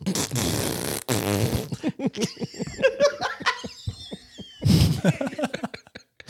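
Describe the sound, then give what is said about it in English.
A voice imitates a loose, flappy fart with wet, sputtering raspberry bursts and rapid fluttering pops, loud, and laughter breaks out around the noises. “The greatest farts to me are the ones where it sounds like your ass cheeks are as loose as a deck of cards.”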